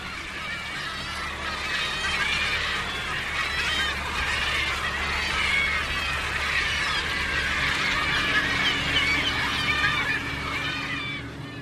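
A flock of about 500 gulls and gannets at sea calls continuously, waiting to be fed on fish leftovers thrown back into the sea after the catch is sorted and gutted; a dense overlapping mass of squawks and cries with a steady low engine-like rumble underneath.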